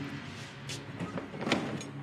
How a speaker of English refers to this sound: Oh, and he's locked the door. He's locking the...